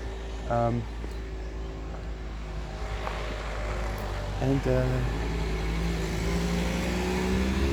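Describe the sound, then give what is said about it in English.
Steady rumble of road traffic passing a bus stop, a continuous low engine drone that swells slightly toward the end, with a couple of brief voices breaking through. “So I think last time when I was making this commute, I'm on the bus station, I'm on bus stop, and I'm trying to catch a train, a bus to the neighboring town.”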